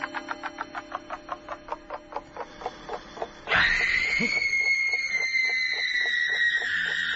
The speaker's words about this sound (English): What was that? Scream. What did you think it was? Oh, isn't it horrible? Yes, it is, but it might have been worse.